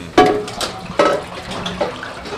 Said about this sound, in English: Oil hitting water.